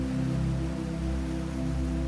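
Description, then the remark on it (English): Steady, even rainfall hisses continuously, with a low droning hum running underneath. No voices are heard, and the wash of rain stays constant without any distinct drops standing out. “before the rain started, everything appeared the same shade of green.”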